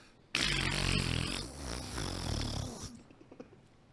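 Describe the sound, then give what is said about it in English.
A single loud, sustained mouth-made fart noise, a wet, buzzing raspberry blown through the lips for about two and a half seconds, alone, trailing off abruptly. “I must now demonstrate a fart sound with my mouth.”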